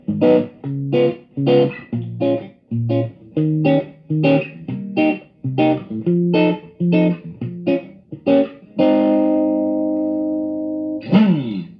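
An electric guitar through an amp with some distortion plays a rhythmic run of short, punchy chords, then lets one chord ring out long before a quick final slide. No one speaks.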